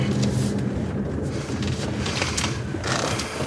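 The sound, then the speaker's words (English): A car drives along with a steady engine rumble and broad road noise, the hum shifting slightly as it slows while pulling up in a cul-de-sac in a neighborhood near the border between Grapevine and Southlake. No one speaks. “By the time we pulled up, Mike had sent her several emails, texts, and voice messages with no response.”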